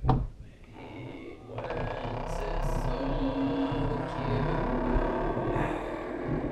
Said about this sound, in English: Yeah, that was the front door fucking opening!